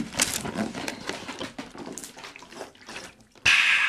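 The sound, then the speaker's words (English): Someone takes a swig of water: wet sloshing and swallowing sounds over a few seconds, ending in a sudden louder rush of breathy, watery noise. No one speaks. “Let me get a swig of this water. My throat is dry.”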